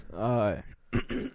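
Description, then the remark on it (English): A drawn-out, strained vocal rasp gives way to a couple of rough, breathy bursts as someone who has a cough coughs too hard and forcefully clears their throat. “Man, I coughed too hard.”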